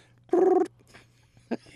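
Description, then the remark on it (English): A human voice imitates a young raccoon's call: one loud, tonal, slightly buzzy squeal lasting about a third of a second, then a short fainter chirp, over a low steady hum. “you've discovered that you know another vocalization from the raccoon”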